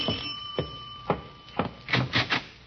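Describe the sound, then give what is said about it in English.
A doorbell rings with a thin, steady tone beneath a series of sharp, bright strikes, spaced out at first and then quickening into a close cluster of three. Nobody speaks. “What's that? Doorbell sounds like”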